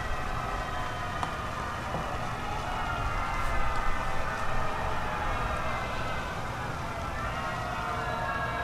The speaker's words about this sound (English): Man, their boos kind of sound like a fire hydrant. A fire engine.